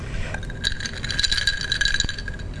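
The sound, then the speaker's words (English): Ice cubes in a drink rattle and clink against glass in a steady jumble of bright, tinkling taps, with no voices over the sound. “It's ice cubes in my drink.”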